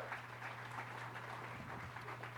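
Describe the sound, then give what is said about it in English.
A church audience claps steadily for the worship band on a Sunday morning for a couple of seconds, a dense, even wash of applause with no voices, over a constant low electrical hum. “Give the band a big round of applause this morning.”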